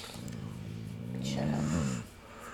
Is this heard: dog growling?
yes